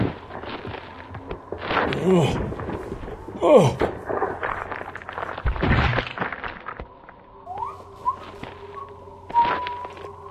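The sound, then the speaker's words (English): A left-cross punch to the face, thrown far out of town, lands with a heavy, dull thud, followed by a few more muffled thumps and short grunting sounds, over a low steady hum. “It was just that moment when you threw a professional left cross.”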